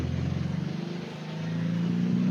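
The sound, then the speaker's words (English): The engine of a 1960 model 356 sports car revs loudly as it is driven, its droning pitch dipping briefly before climbing again as it pulls through the gears, with no voices. “So can you get up through the revs there, through the gears? Get a little bit of a backfire there.”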